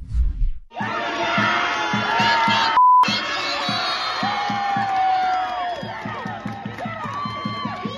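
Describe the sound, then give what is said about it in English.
A large crowd of protesters at UCLA shouts and cheers loudly and continuously, many voices overlapping in excited whoops and yells, with rhythmic thumping beats underneath throughout, as they beat a piñata of Israeli Prime Minister Benjamin Netanyahu with a stick. “And screaming at the top of their lungs.”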